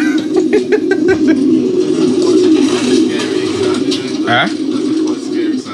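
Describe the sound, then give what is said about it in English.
Pigeons coo continuously in a low, throaty murmur, loud, with a few brief higher chirps and flutters scattered over the steady rolling drone. “So I, you know, I'm actually scared of pigeons.”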